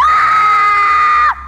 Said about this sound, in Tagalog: Pero isang matinis na tili ang pinakawalan ng nasa kabilang linya.